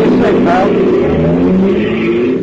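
A taxi cab engine revs loudly and accelerates away, its rising and shifting motor drone steady throughout the short stretch of street noise.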